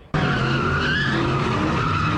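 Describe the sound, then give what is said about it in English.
Car tires squeal loudly and continuously for a couple of seconds during a night-time street takeover on Figueroa outside Crypto.com Arena, a sharp screeching whine over a rough engine roar, starting abruptly and staying intense throughout. “Tires are expensive. Like, why do you do that?”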